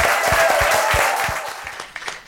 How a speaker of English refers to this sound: Can we give a huge round of applause?